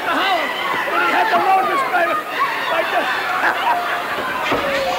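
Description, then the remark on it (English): A capacity crowd at a wrestling match fills the arena with a steady, loud roar of overlapping chatter and cheering voices, a constant babble with occasional shouts rising above it throughout. “Capacity crowd on hand.”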